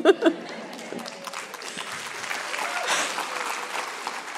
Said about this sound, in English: That's got to be the easiest applause I ever got in my whole life.